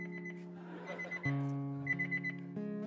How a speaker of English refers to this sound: Gotta love the alarm.